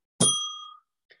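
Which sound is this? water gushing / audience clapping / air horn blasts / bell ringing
bell ringing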